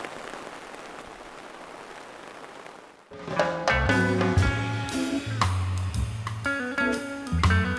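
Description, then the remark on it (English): A steady, even hiss of rain falling, heard on its own for a few seconds before loud music abruptly starts and plays over it. “Oh, crap, it's raining.”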